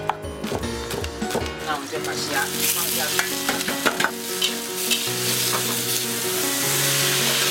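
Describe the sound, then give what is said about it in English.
Shrimp sautéing in a hot pan in a home kitchen, cooked as a dish for meal boxes: a loud, steady sizzling hiss broken by repeated scrapes and clicks as the food is stirred, with a low hum running underneath. “After she finishes with a sesame oil chicken, she starts prepping the shrimp for the next dish, sautéed shrimp.”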